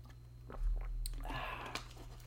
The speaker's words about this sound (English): Excuse me while I take a sip of this beverage here.